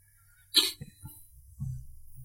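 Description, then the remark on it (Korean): A single sharp, breathy cough bursts out, followed by a couple of softer catches of breath, then quiet, low rumbling murmurs. “뭔 소리요? 그? 기침하셨어요?”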